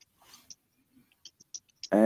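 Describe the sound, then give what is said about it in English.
A remote caller's connection drops out during a call, leaving nearly two seconds of dead air broken by faint, scattered digital clicks and blips before a voice suddenly cuts back in. “you're frozen us there for a sec. I don't know. We're after losing them all together.”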